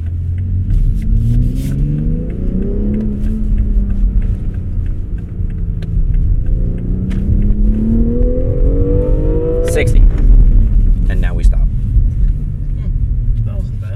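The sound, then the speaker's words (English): An SUV's engine revs continuously as it drives off-road, its pitch climbing, dipping, then surging again over a heavy low rumble, with scattered knocks and rattles over rough ground. “Also, these like X3s, X4s, pretty much all of our SUVs can go off-road really well.”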